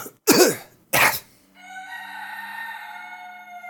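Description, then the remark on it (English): Two loud, harsh throat-clearing bursts, one right after the other, followed by a steady, quieter humming drone that lingers to the end. “I'm clearing my throat for future.”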